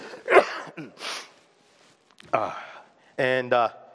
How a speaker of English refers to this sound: And I knew I was going to start coughing once when I got done. Okay, sorry. Apologize.